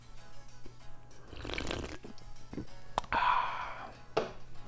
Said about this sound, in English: Have a sip of a drink here.